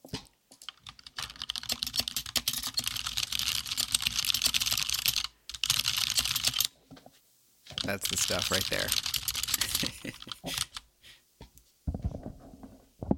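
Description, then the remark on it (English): Steady, rapid keyboard typing clatters on for several seconds with a few short pauses, sounding slightly muffled and in the background, and a voice speaks briefly near the end. “But it's, like, a little muffled because it's in the background. So it's not like the crisp sound that we would hear if we were typing it ourselves.”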